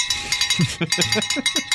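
bell being rung

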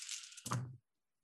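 dice being rolled

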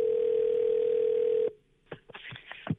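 telephone call connecting

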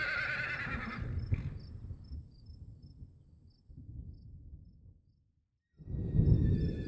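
horses whinnying and snorting

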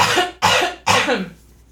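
cough

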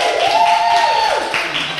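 audience clapping and cheering

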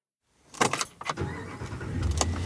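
pickup truck engine running

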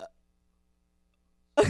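burp

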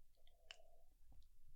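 sipping coffee

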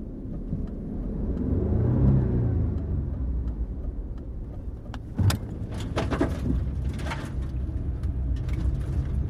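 car driving on road

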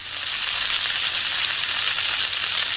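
bacon sizzling

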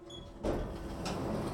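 elevator doors sliding open

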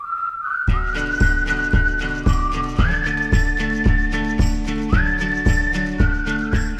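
whistled melody

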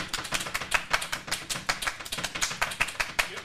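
round of applause

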